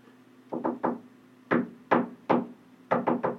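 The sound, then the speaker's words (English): SOS tapped out in Morse code on a hard surface: three quick knocks, three slower, more widely spaced knocks, then three quick knocks again, crisp and fairly loud over a faint steady hum. “Oh, I thought you really knew Morse code. That. I was really excited. That was I know SOS.”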